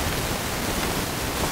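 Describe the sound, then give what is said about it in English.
A steady, even wash of static hiss from a microphone during a live stream fills the whole moment, fairly loud and unbroken, with no voices or other sounds over it. “It's just very static. I don't know whose mic it is, though.”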